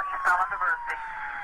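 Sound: police siren sound effect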